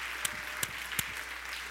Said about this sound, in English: Let's give the Lord a big hand clap.